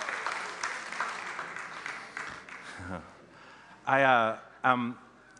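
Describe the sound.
A steady round of applause claps and rustles for a few seconds, then fades out, followed by a few loud voiced whoops or shouts.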